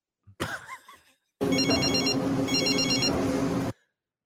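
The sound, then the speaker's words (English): A telephone rings loudly in two trilling bursts over a steady, noisy background, after a brief warbling lead-in and a short pause. “It's Monty calling you. You sons of biscuit, pick up the phone up there, boy.”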